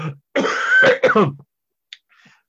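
A person clears their throat harshly and coughs, a rough rasping burst lasting about a second, followed by a couple of faint breathy sounds. Fairly loud, with no talking.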